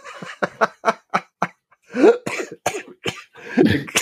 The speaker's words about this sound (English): As I cough myself into oblivion.